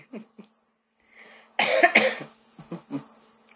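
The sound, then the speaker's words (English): A burst of coughing and throat clearing from someone with something in their throat after drinking water: a couple of short throat sounds, then a loud rough cough from about 1.6 s, followed by a few softer clearing grunts. “So that's why my throat had a little something in it.”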